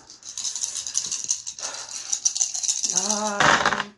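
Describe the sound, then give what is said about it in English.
Five dice rattle together in a cupped hand, a dense clicking shake lasting a few seconds, then a brief sharp clatter as they tumble out, rolled in a game to try to get 3 or higher on each. A voice briefly reacts near the end. “But if I do that in order to try to get to the next room, I have a might of 5. Which would give me 5 dice to try to get 3+.”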